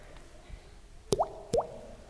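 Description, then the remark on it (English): Two quick watery plops, each with a short rising gurgle, about half a second apart, as water is drained off, over faint background hiss and no voices. “Just had to drain the water off.”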